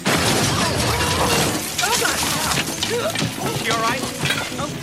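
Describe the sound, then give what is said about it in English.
A car smashes through a house: a loud, sustained crash of shattering glass and splintering debris that churns for several seconds, with raised voices breaking through the chaos. “And this person is mad at that person, and that person starts yelling at everyone until a literal car crashes through the house.”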